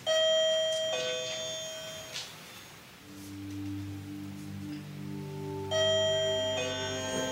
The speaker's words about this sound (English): I actually went to a hardware store and I was able to obtain a wireless doorbell that I brought into the courtroom before anyone arrived that morning of the closing, and positioned it in the courtroom so that I could operate it